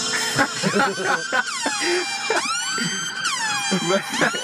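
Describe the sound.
A loud siren sound effect wails in repeated rising and falling sweeps, continuous, with people talking underneath the blaring tone.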